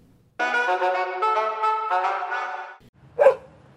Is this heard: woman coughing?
no